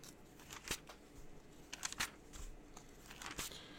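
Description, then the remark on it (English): Pages of a paper NASB Preacher's Bible, handy size, with a floppy, flexible goatskin cover, are flipped in quick succession to get to Acts 20, producing several crisp rustles and soft snaps at an uneven pace, with no talking. “Reading from a paper Bible, man, you can't go wrong.”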